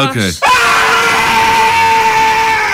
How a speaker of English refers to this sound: Okay, I'm going to scream, okay?